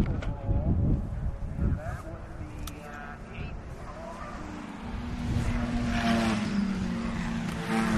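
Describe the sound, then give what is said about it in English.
Cars pass by, a steady traffic roar with an engine hum that swells louder in the second half, with faint indistinct voices underneath. “With a better view of the cars going by.”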